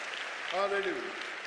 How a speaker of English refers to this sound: Get the Lord a hand clap. Come on. Get the Lord.